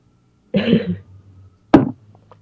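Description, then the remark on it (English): Two abrupt bodily sounds with no talking: a longer rough, voiced hiccup-like burst, then after a short pause a sharp, sudden second hiccup, both fairly loud. “I have to hiccup still. This is annoying.”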